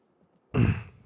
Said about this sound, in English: Sorry, I was trying to clear my throat.